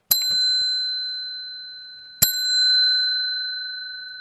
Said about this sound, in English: We'll just do one bell to get us started here.